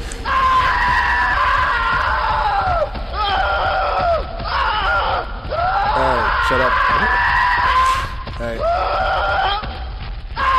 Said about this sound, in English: Let's see, SCP scream.